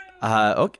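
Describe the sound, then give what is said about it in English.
A single drawn-out, displeased meow from a cat as someone tries to put it in a Pokeball, loud, holding steady for about half a second before bending downward at the end. “Oh, he does not like that. He's mad.”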